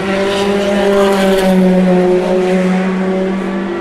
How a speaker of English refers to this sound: All is quiet. There have been ripples of applause for the various GTE cars as they go past for the last time. Oh no, that's the Toyota passing. That's the number one Toyota. Ripple of applause for them.